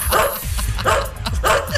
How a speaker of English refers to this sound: Real dogs on video going, it's nonstop canine action.